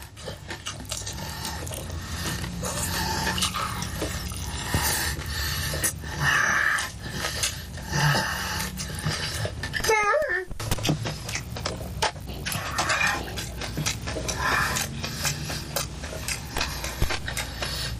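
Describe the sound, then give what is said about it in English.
Loud wet chewing and smacking as a man eats chicken wings, with dense clicky bites and slurps running continuously and no talking. “He is eating the wings, by the way. He's eating them like a goddamn pig.”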